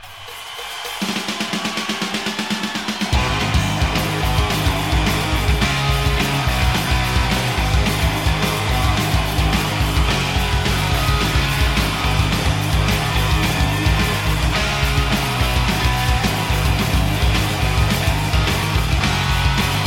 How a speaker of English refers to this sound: From the top, like the way the drum kicks in and then the guitars really are yelling to you. It's great, man.